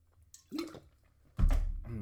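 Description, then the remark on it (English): A parched person takes a drink of water on a warm summer day in Oregon: a soft wet sip, a short pause, then a louder gulping swallow with no talking. “I'm parched, so I'm gonna take a sip of water.”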